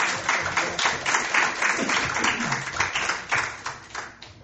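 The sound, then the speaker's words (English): An audience applauds the Lord steadily for several seconds, a dense wash of many hands clapping, with faint voices mixed underneath. “You've got a round of applause. Un aplauso al Señor.”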